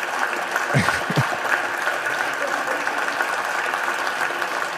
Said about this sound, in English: Senate chamber is pretty empty. Why are they clapping?